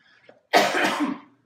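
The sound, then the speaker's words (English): A single harsh, breathy cough bursts out, lasting under a second after a faint brief sound, then fades to silence. “And bear with me, I have a bit of a cough.”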